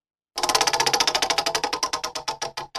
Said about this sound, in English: Well, let's spin this wheel, see what there's. Twister on here, that'll be hard to play. Twister. That'll be hard to play over the phone. Let's see if it lands on a new game.